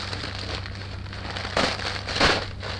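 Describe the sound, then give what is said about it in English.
Continuous crinkly rustling of tissue paper as a gift, a blanket in a gold package, is unwrapped, with two louder crackling swells near the end. Nobody speaks. “More tissue paper.”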